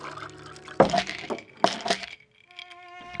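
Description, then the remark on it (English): Water is poured into a glass in two short splashing bursts, followed by a brief, steady ringing tone and quiet. “You have a glass of water?”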